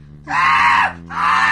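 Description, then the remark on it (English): A voice imitates a car engine, as when driving alone in the car, with two loud, sustained, strained vocal bursts separated by a brief pause, the second cut off at the end. Steady low hum beneath. “Can you do a sound of an engine, please? It's a very dull sound.”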